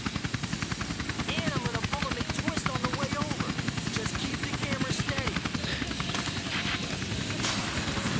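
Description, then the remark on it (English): A helicopter's rotor chops steadily overhead in a rapid, loud, rhythmic thumping that fills the whole scene, with a voice faintly audible beneath it. “The chopper's just the icing.”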